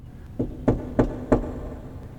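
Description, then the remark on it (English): Four evenly spaced knocks ring out clearly, each one trailing into a long, booming echo as if struck inside a vast, hollow chamber. “The knocking, again, it's not a banging, it's not aggressive, but the sound of the knock echoes and reverberates as if in a massive chamber.”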